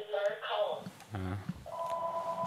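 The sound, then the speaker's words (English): A phone rings with an incoming call from Brian Callen, a steady electronic two-tone ring sounding in the second half, after a brief stretch of voices and noise. “So your call's calling.”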